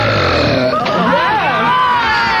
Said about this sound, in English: Nobody wants to hear you talk, just belch.